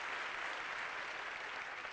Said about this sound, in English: Thank the youth for awesome, awesome job. Amen. Let's get a Lord a hand clap for him. Praise God. Amen.